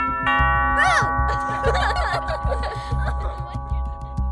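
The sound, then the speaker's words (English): A doorbell chime rings near the start in a game of Ding Dong Ditch, and its tones hang in the background while quick, giggly snickers bubble over them for a few seconds. “Sometimes it meant playing Ding Dong Ditch.”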